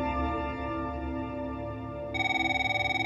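A woman's telephone starts ringing near the end, a bright, rapidly pulsing electronic trill that cuts in over a sustained, droning musical background. It sounds fairly loud, with no one talking.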